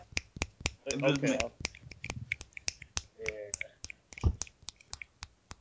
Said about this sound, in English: No, you've got to snap your fingers. I actually can't snap my fingers. I can't.